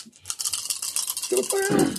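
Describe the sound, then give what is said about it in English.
Six dice are rolled for a tactics roll in a game, rattling and clattering in a quick burst of bright, clicking taps, then a voice begins speaking over the tail end. “Dice. You roll tactics.”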